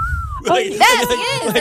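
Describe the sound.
A person imitates a wolf whistle: a short, clear whistled tone, then sliding, swooping vocal sounds with rising and falling pitch, fairly loud, with no other talking.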